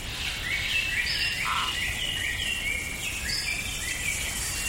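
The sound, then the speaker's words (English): Dense tropical rainforest ambience: a steady wash of buzzing insects with overlapping bird calls and chirps, layered at moderate volume with no voices. “Imagine a tropical rainforest.”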